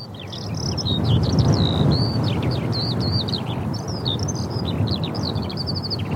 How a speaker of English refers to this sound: Oh, very windy. Analyzing. Waiting for results. Skylark. Alauda arvensis. Nice job, Chirp-O-Matic.